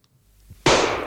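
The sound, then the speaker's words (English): A single distant .38 revolver gunshot sound effect breaks a near-silence with one abrupt, loud report, then trails off in a broad, rushing echo that lingers for a moment. “That sounds like somebody's like 38 from 9 stalls away at the shooting range with your headphones on.”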